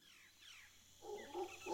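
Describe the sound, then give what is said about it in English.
A family of howler monkeys howls in a forest, with faint wavering calls at first, then a deep, rough roaring chorus that swells and grows louder toward the end. “Still working overhead in the Arisma, he's encountered a family of howler monkeys.”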